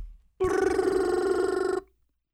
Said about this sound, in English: Answer the damn phone. It's been ringing.